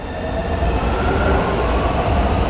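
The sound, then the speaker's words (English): A train rumbles steadily along the rails, a continuous roar with a faint metallic whine above it, no voices, heard from inside a moving carriage, riding to a music store just off Avenida Paulista. “hopped a train to a music store just off Avenida Paulista, a wide avenue that cuts through a canyon of skyscrapers in the city.”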